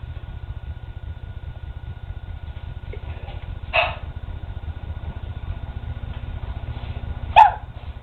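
Two separate dog barks, one around the middle and a sharper one near the end, rising over a steady low hum of background noise, with no talking.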